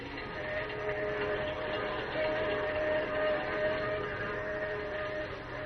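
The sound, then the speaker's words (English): A train bound for San Francisco rumbles steadily along the tracks at night, a dense continuous roar with a faint metallic whine running through it, constant in loudness throughout. “As the train roars into the night, he and Manfred talk softly outside the door of Lois's dressing room”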